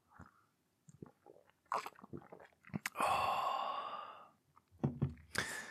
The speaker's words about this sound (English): Hang on a second, just need to have a quick sip.